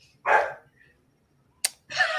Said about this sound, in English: Oh, see, you got dogs that just burst in your room, which I find hilarious.